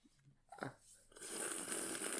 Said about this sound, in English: Do not bitch sip at me, sir. Sir and or madam.